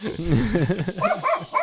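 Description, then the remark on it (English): A woman imitates a dog with a quick run of yappy, whining barks and growls, fairly loud, rising into higher-pitched yips toward the end. “impersonating a dog with her illusory magic to come around the corner.”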